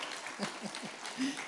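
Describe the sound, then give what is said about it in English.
An audience claps in response to a joke in a dense, steady patter with a few scattered voices and light chuckles mixed in. The applause is fairly quiet and lasts only a moment. “So clap, laugh, you did all that.”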